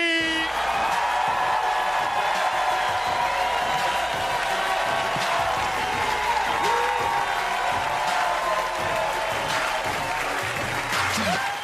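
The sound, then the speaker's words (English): A crowd applauds steadily for around twelve seconds, a dense, even roar of clapping with scattered cheers and shouting voices mixed in, holding at a constant loud level throughout. “Man, got a nice crowd in here tonight.”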